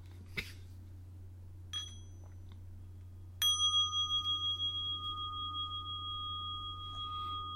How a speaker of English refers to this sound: A little bit of a bell now.